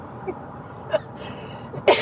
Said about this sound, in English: laughing into a cough. Sorry. It just, that makes me laugh.